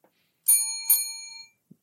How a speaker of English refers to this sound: seems like the round's over. They're ringing the bell.